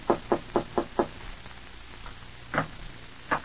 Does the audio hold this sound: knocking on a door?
yes